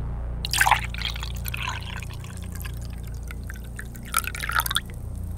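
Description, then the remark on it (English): Water is poured into a container in two short bursts, a splashing, gurgling stream, with a quieter trickle between them and a steady low hum underneath. “I clearly have poured something.”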